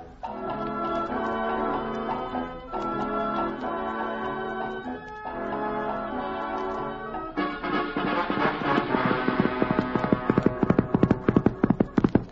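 A steady musical passage gives way to a quick, rhythmic clip-clop of horse hooves that grows louder and busier as a cowhand rides up on Reginald, the Wonder Horse, to the Bar Cheerio Ranch in Arizona on a hot day.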